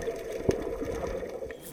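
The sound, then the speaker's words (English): A muffled, continuous watery wash underwater in the ocean, low and murky, with a brief louder bubbling burst near the middle and no voices. “The Cyclore is underwater in the ocean, tracking Andrew Bronze.”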